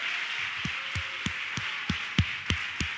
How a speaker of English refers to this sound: Why don't we, before we're seated, why don't we give God a big hand clap of praise this morning?